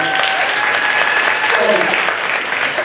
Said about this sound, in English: Clap your hands.